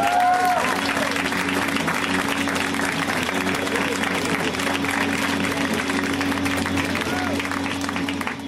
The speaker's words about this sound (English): Moving right along, this next comedian is in town from Boston, was doing the Riot LA Comedy Festival. A round of applause, everyone, for Sam J, everybody.